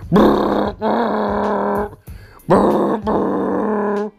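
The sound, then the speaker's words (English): A voice imitates a semi truck horn with two long, loud, buzzy blasts, each briefly dipping partway through, separated by a short pause. The tone is rich and brassy, like an air horn. “Now, this truck, this semi, lets out this long.”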